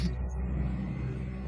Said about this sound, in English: Sorry, my cleaning lady decided to vacuum above my head. Like, is a truck driving through your house? Like, what is going on?